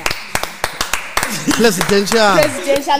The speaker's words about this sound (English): Let's clap hands for ourselves, guys.